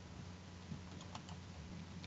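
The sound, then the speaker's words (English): A handful of soft, irregular clicks from typing on a computer keyboard as a link is pasted and Enter is pressed, fairly quiet, over a steady low hum with no one talking. “Paste. Enter.”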